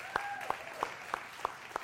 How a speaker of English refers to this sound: And can we just give a round of applause for our wonderful leadership?